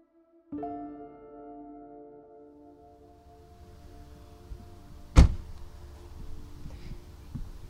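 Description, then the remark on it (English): A car engine idles with a steady low hum that gradually settles and fades, followed by a single sharp mechanical clunk and faint rumbling as the car is pulled over and stopped in the Mountain Grove Association Cemetery, Bridgeport, Connecticut, on a sunny late-September day. No one speaks. “So I've just pulled my car over in the Mountain Grove Association Cemetery here in Bridgeport, Connecticut.”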